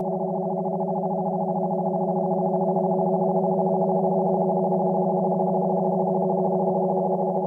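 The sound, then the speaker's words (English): Minimalist drone music: a steady, unchanging drone of layered sustained tones, a low hum beneath a dense cluster of mid-range pitches, holding at constant loudness throughout with no voices or rhythm. “It's a minimalist musical style that emphasizes the use of sustained,”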